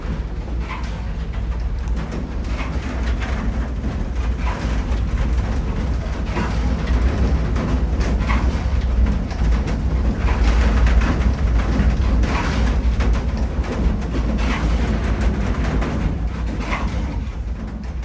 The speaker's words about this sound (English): The sounds you're going to hear will be rain, the working of a windmill, and the bells of Zuiderkerk.